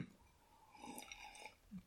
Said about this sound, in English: So for today's episode, I am sipping on some Evan Williams Kentucky Straight Bourbon Whiskey on the rocks. That's right, folks, it's the regular Evan Williams.